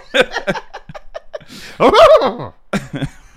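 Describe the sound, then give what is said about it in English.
Short breathy vocal bursts build into a loud, wavering, nasal whinny as someone mimics a horse, followed by a few quieter huffs. “That's the worst horse impression.”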